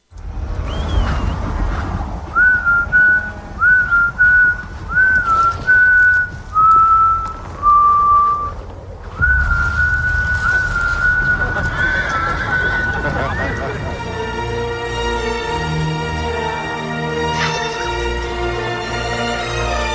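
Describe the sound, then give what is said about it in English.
Benedict Cumberbatch whistles a slow, steady tune in clear sustained notes, then a mashup crossfades it into the swelling orchestral Jurassic Park film theme with rich strings that plays on to the end. “And I made a mashup of his whistling and Jurassic Park.”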